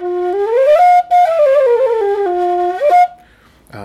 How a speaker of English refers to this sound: Yeah, it's a good whistle. And cheap for a low whistle.